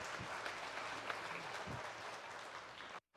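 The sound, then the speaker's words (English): A crowd applauds performers heading off stage after a skit, a dense wash of clapping hands sustained at an even level for about three seconds before cutting off abruptly. “Let's give them a big round of applause as they head off stage.”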